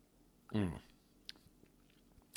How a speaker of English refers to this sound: But you can't go wrong with excuse me, any of these. They're both tasty. I got to take another sip.